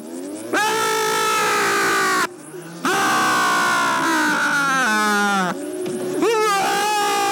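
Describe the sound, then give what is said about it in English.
Willie Nelson, locked in a room, screams in terror, loud, in three long sustained bursts with a brief gap after the first, his voice straining and wavering. “He's screaming for his life in a way that is half like horror comedy and half like real, but just comically unreal because of how much they can't do either of these things.”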